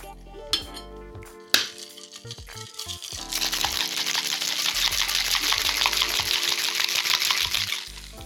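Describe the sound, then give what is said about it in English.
A few sharp clinks of ice against metal, then a cocktail shaker with ice, egg white and Seville orange marmalade is shaken hard until cold for about five seconds, a loud, steady, dense rattle. No voices are heard. “And then you shake that until cold, which is always fun because it makes your hands really cold.”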